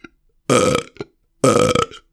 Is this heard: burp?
yes